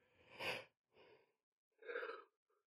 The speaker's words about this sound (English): Man, I gotta start recording early. I just yawned.